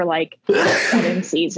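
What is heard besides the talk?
sneeze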